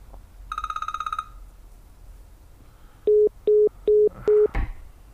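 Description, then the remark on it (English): A brief buzzy electronic phone trill, then a pause, then four evenly spaced, steady mid-pitched telephone beeps as a call disconnects after the caller hangs up, followed by a sharp click. No one speaks. “What was that beep, beep, beep?”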